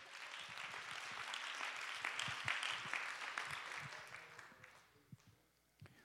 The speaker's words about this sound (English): Let's go ahead and clap our hands and give him praise.